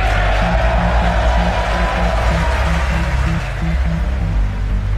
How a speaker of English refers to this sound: That's President Donald Trump to a huge round of applause at the State of the Union address.